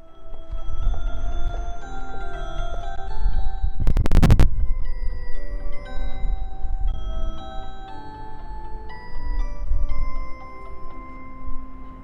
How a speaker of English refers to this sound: Which is the little chimes that play right before each announcement. I was like laughing so hard, trying to hold up the audio recorder to get this because it was very, very interesting.